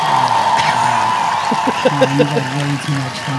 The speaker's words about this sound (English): Let's get up some audience applause.